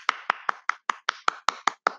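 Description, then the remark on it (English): Ten sharp, even claps at a brisk steady beat of about five per second, fairly loud, with no talking. “Okay, that deserved an automatic clap.”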